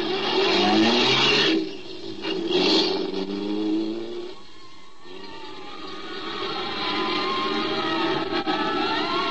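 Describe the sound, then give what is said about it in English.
A car engine roars while driving through the streets, revving and accelerating in rising sweeps, dips briefly around the middle, then picks up again with a steady, loud mechanical drone. “The fire engines and police cars streaking through the streets toward the Olympus Piano Factory told me which way to head.”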